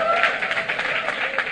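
An audience breaks into dense, sustained applause, many hands clapping at once in a steady wash of sound that stays fairly loud throughout the short moment.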